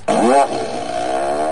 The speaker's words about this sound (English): Fire up the fart machine for Friday happy half hour.